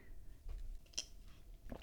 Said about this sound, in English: That was my last sip of a Shiraz. I really felt like drinking a red wine tonight, and it feels like a medicine.